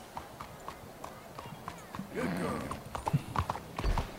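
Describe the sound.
Horse hooves clip-clop in a steady, even rhythm as the animal is ridden along, with a brief whinny-like sound and faint voices in the background.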